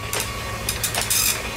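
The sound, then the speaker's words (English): A fax machine, an Inmarsat unit aboard the North Korean cargo ship Pong Su, prints over a steady low mechanical hum, with several short bursts of raspy, high-pitched buzzing at an uneven rhythm. No one speaks. “Fax messages could be received via a machine known as Inmarsat.”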